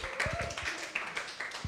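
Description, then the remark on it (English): An audience claps for God together in a short burst of dense, overlapping hand claps that hold a steady, moderate loudness for under two seconds. “You know, give God a big clap.”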